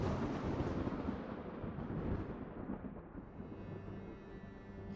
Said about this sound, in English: But as you look towards her, you hear a crash of thunder.